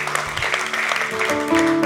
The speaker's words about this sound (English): Come on, clap your hands. Hallelujah.